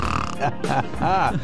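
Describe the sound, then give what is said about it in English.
A voice imitates snoring as an impersonation of President Joe Biden at a climate meeting: rough, gravelly snorts and wavering throaty hums in a few uneven bursts, fairly loud, with no other talking. “Oh, he did not snore.”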